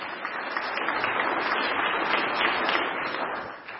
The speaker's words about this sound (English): Wow, wasn't that fantastic? Should we just give him a little round of applause? That was really good. Well done, guys.